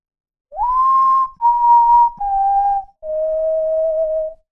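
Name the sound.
soft whistling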